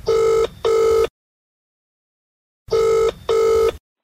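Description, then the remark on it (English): Katie Taylor's telephone rings in two double-burst cycles before going to voicemail, each pair of bright, steady electronic trills followed by a long silence, loud with no voices. “when someone achieves the kind of fame that Katie now has, the phone starts ringing”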